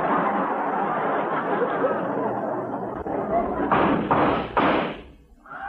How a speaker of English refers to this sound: Hey, those shots came from outside the office.